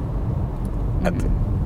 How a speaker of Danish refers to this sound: At du kan se, nu samlede jeg det op på din bopæl, går jeg ud fra, og så så kører vi rundt op i Nordsjælland nu, og når vi ikke gider mere, så kan vi køre hjem